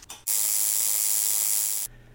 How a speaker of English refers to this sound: So a tattoo machine is basically like an old doorbell. So it just oscillates. Instead of ringing a doorbell, it's moving a needle bar and pins.